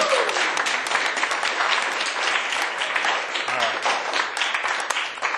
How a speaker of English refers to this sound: Thanks for sharing, you guys. Can you guys give a round of applause so far? I think it's good.